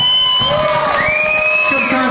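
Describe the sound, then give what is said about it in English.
A large concert crowd at the Wild Horse Saloon cheers loudly and continuously after the last song of the night, with shrill whoops and yells rising over the roar of applause for the whole moment. “Let's just listen to the crowd and their reaction”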